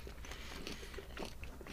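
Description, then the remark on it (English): Crunching and chewing of a crisp mint chocolate biscuit with a milk chocolate coating and crispy mint pieces: a series of brittle bites and mouth sounds repeating irregularly over a couple of seconds, fairly quiet, with no talking. “Got the crunch, got the chew.”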